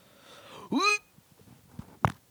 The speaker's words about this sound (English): This dude really just fart through the mic.